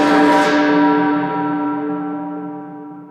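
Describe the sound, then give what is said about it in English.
A single loud strike of a church bell, used for the Toll the Dead spell, rings out alone, its rich metallic tones humming and slowly fading over a few seconds. “I've got necrosis ready to toll decay, chimes at noon.”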